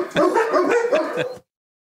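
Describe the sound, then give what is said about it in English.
Several dogs bark and yip excitedly as people arrive home, in quick, overlapping bursts, loud, for just over a second before cutting off abruptly into silence. “my parents are home, so the dogs are going crazy right now.”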